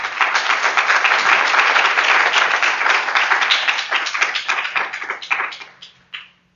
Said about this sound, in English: So let's give him a round of applause and invite him up.